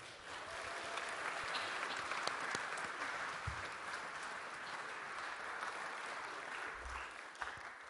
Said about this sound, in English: Keep clapping, they're not up yet.